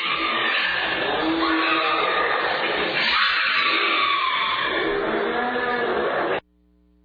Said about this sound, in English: All right, and now, obligatory Halloween sounds. This is a woman screaming while being attacked by a crazed animal.